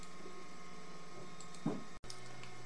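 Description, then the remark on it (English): A 3D printer hums steadily at moderate level, with faint whining motor tones, a brief squeaky movement partway through, and a momentary cutout near the end. Nobody speaks. “My 3D printer's going off.”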